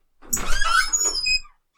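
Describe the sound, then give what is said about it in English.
A voice imitates a creaking door opening: a drawn-out, wavering squeal lasting just over a second, sliding through high, strained pitches with a rough, grainy texture before cutting off. “You go to, you know, open the door. And as it opens, you just hear this creaking, noise.”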